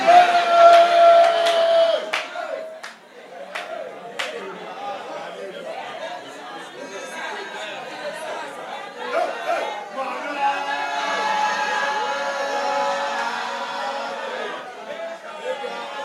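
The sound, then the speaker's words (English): A large crowd in a church shouts and chants the name "Manasseh" together, a dense, continuous roar of many voices, with a few sharp bangs in the first seconds before the din settles into a steady swell. “Do you know that as everybody shouting Manasseh, some people's faces are straight?”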